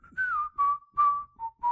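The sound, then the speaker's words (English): Someone whistles an imitation of a phone ringtone that went off on a Trader Joe's employee's phone in a parking lot: five clipped notes at a steady mid-high pitch that dips slightly toward the end, with no talking over it. “And their phone went off and they looked at it and hung it up, but it did the...”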